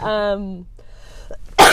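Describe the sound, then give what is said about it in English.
A voiced, throaty hum slides downward, followed by a brief pause with small rasping sounds and then a sharp, loud cough bursting out. “This is why I didn't want my mic below me, because I'm going to cough now.”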